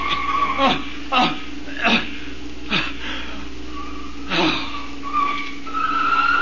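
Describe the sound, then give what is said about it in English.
Tires screech in a series of sharp, squealing bursts as a car skids hard, fairly loud, ending with a sustained high whine as it comes to a stop. “Stop this car. Let me out.”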